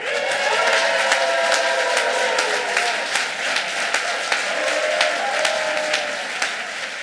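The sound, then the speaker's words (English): Sustained audience applause as a performer is welcomed to the Dynasty Typewriter stage, a dense, steady roar of many hands clapping with sharp individual claps popping out, alongside faint cheering and crowd voices. “Let's put your hands together and clap them as hard as possible as we welcome to the stage Bethlehem's favorite son, the one, the only”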